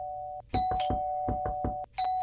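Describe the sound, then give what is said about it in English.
A steady electronic bell tone rings while about seven sharp, loud knocks rap on a door in an uneven series, with no one talking. “I think someone... at the door, huh? I should probably answer that.”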